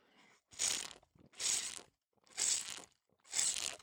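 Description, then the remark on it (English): Four loud slurps of a hot latte from a coffee shop, each a short hissing gulp of air and liquid, repeated at an even pace with brief quiet gaps between them and no talking. “So I'm going to partake a little bit of this latte while we just have a moment of slurping.”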